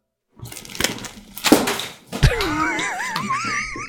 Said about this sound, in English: Sorry, spilled a bunch of water.